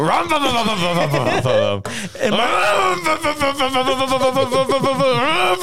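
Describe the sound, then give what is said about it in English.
A man imitates his own loud, rasping snoring, likened to a chainsaw: drawn-out guttural rattles with a brief pause partway through, steady in volume for several seconds. “I snore like a chainsaw”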